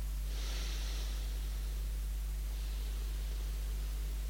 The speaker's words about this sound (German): Und wenn Sie nur mal anfangen mit der Atemübung, einfach nur, wenn mal keiner guckt und Sie allein im Wald sind, dann wichtig mit dem Ausatmen bitte beginnen, weil dann der Atem in eine natürliche, dann kommt man dazu, ganz natürlich tief zu atmen.